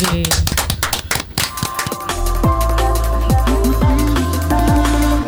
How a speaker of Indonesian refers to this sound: Tepuk tangan dulu dong.